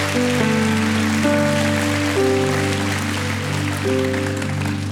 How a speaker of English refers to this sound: Can we give God a hand clap and a shout of praise? Can we welcome her to the family of God?